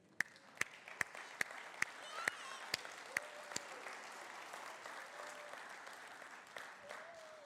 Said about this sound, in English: Now, we know that what we just did here and clapping a little bit is just a little bitty, bitty bit of what's going on in heaven.